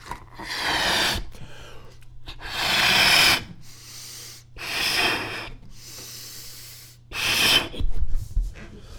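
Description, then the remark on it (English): Four forceful breathy blows of air pushed into a balloon by mouth, each a rushing gust lasting about a second, with short pauses and quieter inhales between them, fairly loud. The balloon is about 30 inches across. “All right, guys. 4 more blows from the balloon.”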